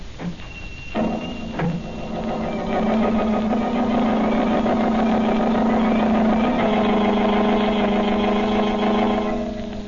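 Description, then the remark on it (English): The Blue Beetle's speedy motor car engine turns over and catches, then settles into a loud, steady running hum, droning on evenly with no voices. “In his speedy motor car, he sets out in search of the murderers of Banker Ridley.”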